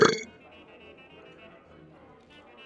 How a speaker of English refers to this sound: … sits back and burps incredibly loud